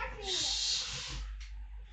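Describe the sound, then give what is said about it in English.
A burst of shrill, high-pitched yelling from young children yelling at each other, loud for about a second before trailing off into quieter background noise. “We have little kids yelling at each other.”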